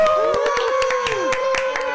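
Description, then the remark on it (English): A canned applause track plays on a show: dense, irregular recorded clapping that sounds steady and loud, with sustained tonal whoops or whistles sliding over it for the full two seconds. “The applause track was canned. That was a terrible applause track.”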